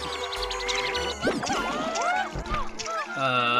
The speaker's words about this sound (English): I gotta say, these water effects are pretty good for, like, a GameCube-era thing. I'm a little bit impressed. And the splash noises are delightful. I'm really liking these splash sounds.